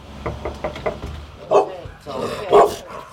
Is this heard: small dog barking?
yes